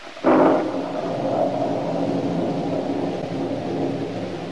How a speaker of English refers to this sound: As she turned and walked heavily upstairs to her room, the storm, which had been gathering strength, finally burst in all its fury.